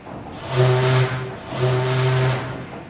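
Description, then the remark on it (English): A ship's horn sounds two steady, low, buzzy toots, each lasting under a second, with a short gap between them and a faint background hiss. “"Give a quick toot on the horn, Reuter," shouted Captain Bobo.”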